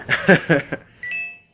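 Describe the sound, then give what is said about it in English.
A short, bright electronic phone notification chime sounds after a few quick bursts of chuckling, holding a steady high tone for a moment before fading out. “Oh, is that your phone?”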